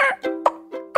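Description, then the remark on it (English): A person imitates a turkey's mating call with their voice: five short, sharp sounds, three yips and two clucks, in quick succession, fairly loud, with no talking around them. “I'm going to teach you how to turkey call. The first call that I'm going to teach you is going to be a mating call.”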